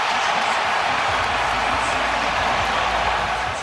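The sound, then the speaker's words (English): A stadium crowd roars and cheers in a loud, unbroken wash of noise after Justin Fields' 50-plus yard touchdown run, holding steady for the whole stretch and easing only slightly at the very end. “The crowd. That sounds really so good.”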